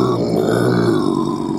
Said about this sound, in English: Are you growling at me?